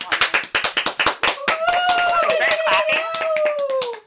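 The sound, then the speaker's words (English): Hands clap in a quick, steady patter of sharp, loud slaps; partway through, a sustained high-pitched voice cheers over the continuing applause. “We're clapping for you because we're so proud of you for starting this one amazing challenge”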